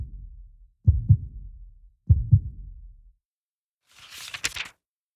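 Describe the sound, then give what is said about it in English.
A slow, gentle heartbeat: two soft, muffled lub-dub thumps about a second apart, followed by a brief airy whoosh near the end. “I think that would help to calm my heart, and my heartbeat would be peaceful and gentle.”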